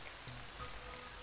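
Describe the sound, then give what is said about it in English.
Steady, soft rain hisses evenly throughout, a faint continuous wash of falling drops with no voices and no distinct individual sounds standing out. “So as you're looking out into the distance through the rain”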